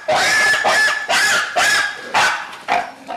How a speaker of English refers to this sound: There would be this symptom associated with the disease in pigs, a barking cough, and it became known as a one-mile barking cough because you could hear it a mile away.